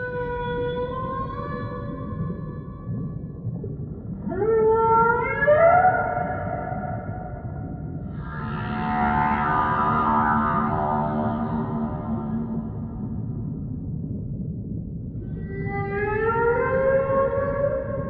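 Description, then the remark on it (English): Voices imitate whale song with long, sliding moans and wails that rise and fall in pitch, overlapping at times, with a breathy, echoing quality and no ordinary talk. “Can we do like whale noises?”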